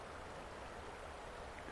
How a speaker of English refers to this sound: So I'm looking at the water. We're being a good Taoist this morning. Just listening to the water.